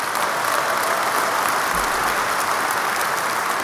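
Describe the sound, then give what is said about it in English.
A steady crowd applause sound effect fills the whole moment, a dense wash of many hands clapping at once, loud and sustained without pauses or voices. “Well, let me go ahead and give a fucking applause to him going to jail.”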